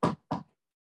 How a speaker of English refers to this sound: If you are near wood, knock on it immediately.